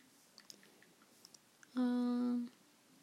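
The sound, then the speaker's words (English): Soft, scattered taps of thumbs typing a text message on a phone screen, quiet, followed by a louder steady buzzing tone lasting under a second. No one speaks. “I like how you just hear the typing.”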